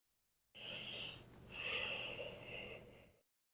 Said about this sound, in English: … takes a long and deep breath and tries again.